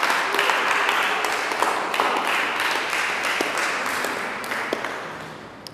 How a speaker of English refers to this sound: Just clap your hands for Jesus Christ.